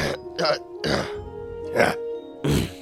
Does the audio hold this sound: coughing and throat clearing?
yes